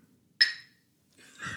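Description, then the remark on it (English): A single bright clink of mugs, some paper and some glass, knocked together in a toast, ringing briefly with a high tone before fading, followed after a pause by a softer, muffled rustling sound. “I don't know why this is a big deal, but in Coffee Talk Studios, some of us have paper mugs, some of us have glass mugs.”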